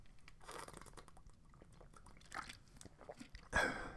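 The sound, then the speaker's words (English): Someone takes a drink of water, with soft wet sips and mouth sounds spread across a few seconds, ending in a louder gulp or splash near the end. No one speaks. “Taking a drink of water.”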